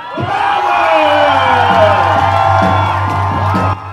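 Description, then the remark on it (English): A large crowd at a fight event cheers loudly and steadily as the fighters are introduced for the night's first female fight, with whoops and shouts rising above a dense roar that holds for several seconds before cutting off abruptly. “Yeah, definitely the biggest crowd support of the night as well.”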